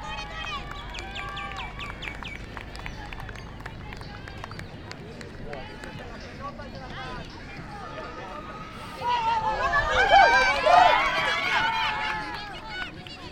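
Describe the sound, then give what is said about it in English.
Outdoor crowd noise around the grounds at the Street Child Cricket World Cup as the games get underway, with birds chirping early on, then a swell of gentle cheering and light clapping for a few seconds before it settles back to a murmur. “There's then the gentle sound of clapping and cheering you can hear all around the grounds.”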